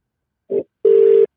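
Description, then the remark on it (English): An outgoing phone call's ringing tone: a short electronic beep followed by a longer steady hum-like tone, with no voices. “It's ringing.”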